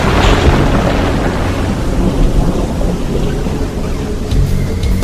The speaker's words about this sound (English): The ground is shaking now. It's an earthquake! The atmospheric pressure is intense. People are scattering and things are falling all over. I can see into the city and the buildings are toppling.